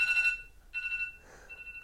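An electronic timer alarm, set for about 10 minutes, beeps in repeated bursts of steady, high-pitched tones, moderately loud, with no one talking over it.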